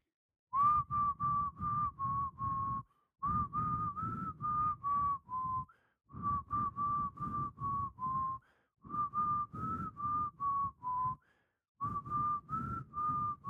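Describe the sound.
Someone whistles the melody of an 80s song in a monotone, short, evenly spaced notes around a single pitch, loud, in phrases broken by brief pauses for breath, with no talking.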